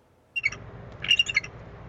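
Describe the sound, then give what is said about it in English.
Two quick bursts of high, thin, chattering calls from a pair of bald eagles nesting in a Douglas fir tree on the UBC campus in coastal British Columbia, the second burst longer and more stuttering, over a low, steady rumble of background noise. “she's been enchanted by the pair of bald eagles who've been nesting in this Douglas fir tree”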